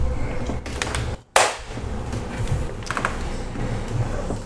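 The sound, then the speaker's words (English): A single sharp hand clap, done to sync audio, cracks out right after a brief moment of quiet, set against a steady low background hum with scattered small clicks and taps. “Do the clap sync.”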